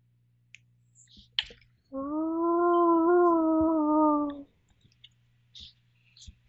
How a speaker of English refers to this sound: A howl sound there... from outside.